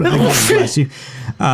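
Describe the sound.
A sudden, forceful sneeze bursts out, a sharp explosive breath with a voiced edge, followed by a brief pause and then a voice resuming.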